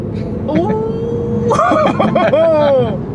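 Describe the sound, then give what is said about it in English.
A Tesla electric car, the slower model, accelerating hard: a high motor whine climbs and bends in pitch over a steady cabin rumble, with faint voices murmuring underneath. “This is the slow Tesla, for the record.”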